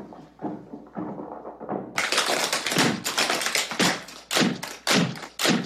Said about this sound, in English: was doing clogging or Irish step dancing